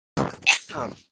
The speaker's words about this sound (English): What the hell just happened? Did you get shot? Are you okay? That was a sneeze slash cough at the same time. I didn't have time to mute myself.